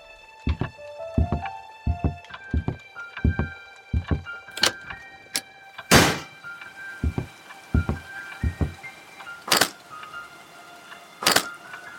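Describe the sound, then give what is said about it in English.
Repeated thuds and bangs against a stuck front door that a drunk person cannot open, irregular, with a few louder crashing blows and a faint metallic ringing underneath; no one speaks. “What's wrong with the door? I can't even open the bloody front door.”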